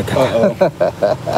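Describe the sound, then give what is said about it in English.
A man's voice mimics an engine sputtering out as it runs out of gas, making a string of about five short, throaty voiced bursts separated by brief gaps, fairly loud and uneven in rhythm. “finally, about a quarter of the mile before we go home, the engine go like this.”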